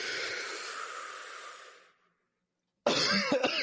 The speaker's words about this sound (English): I didn't know that you were breathing in a joint. I am not. I am. That was a loud cough.